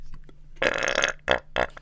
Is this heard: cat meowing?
no